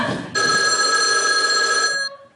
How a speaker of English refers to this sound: This phone never stops for 1 minute.